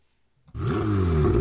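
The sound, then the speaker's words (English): After a moment of quiet, a Ferrari engine bursts into a loud, sustained roar, its rich harmonic growl climbing in pitch as it revs and then holding steady. “Ironically, we've got a car that sounds kind of similar to this, even though this is a Ferrari.”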